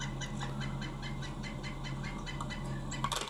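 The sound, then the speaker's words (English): A pileated woodpecker's call, played back from a recording found online: a long, steady series of ringing, evenly spaced notes over a constant low hum, ending with a brief louder, harsher burst. “This is the pileated woodpecker call.”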